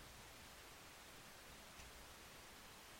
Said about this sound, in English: Oh, apparently that's where the hiss come from. Yeah, from your computer.